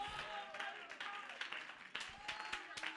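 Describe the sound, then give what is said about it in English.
An audience claps their hands to magnify Jesus in a dense, steady burst of applause, with sharp individual claps standing out and voices calling out beneath it. “Oh, somebody clap your hands and magnify Jesus.”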